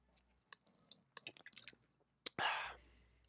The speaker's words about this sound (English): Time for a Pepsi break. Give me a second here. Get a little sip.